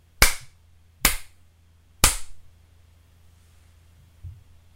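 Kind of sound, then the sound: impact, three hand slaps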